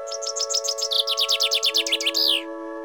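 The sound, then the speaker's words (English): A call of a blue macaw with yellow trim: a quick run of high, bright chirps, about twenty notes in rapid rhythm, ending in a longer harsh note, over a steady low hum with no talking. “This time it's a macaw, blue with yellow trim.”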